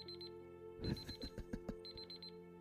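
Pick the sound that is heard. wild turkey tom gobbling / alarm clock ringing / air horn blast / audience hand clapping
alarm clock ringing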